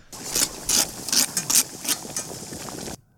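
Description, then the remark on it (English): Harsh, gritty scraping of burnt food off a pan, in a quick irregular series of about eight rasping strokes over a constant background hiss, with no voices. “Isn't he trying to scrape off the burnt part of the stuff?”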